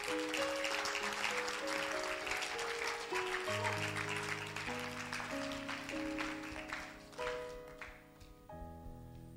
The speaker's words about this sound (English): Clap for Jesus.